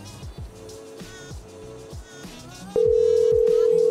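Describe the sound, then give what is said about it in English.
A steady, loud telephone dial tone cuts in and holds after a few seconds of rhythmic, thumping background music with chiming high notes, as a caller calls someone back to get a supervisor on the line. “Let me call him back, because I'll get a supervisor in on this.”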